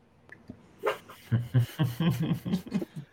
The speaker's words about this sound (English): I mean, you're talking about background noise. I just have firecrackers and barking going on behind me